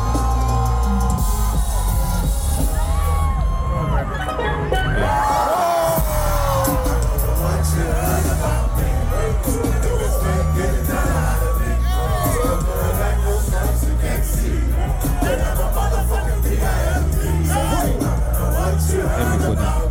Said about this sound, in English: Yeah, I'll play about a minute of it. Oh, live band, okay.